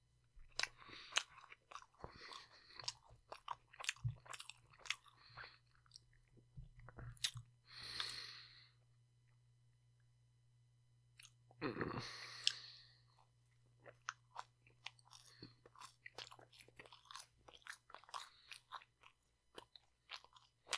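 Chewing on a mouthful of noodles eaten as a snack, wet crunchy bites in a steady rhythm with a couple of longer slurping or breathy bursts, loud with no talking over it.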